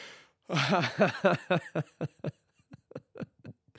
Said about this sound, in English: Here's another yawn, baby.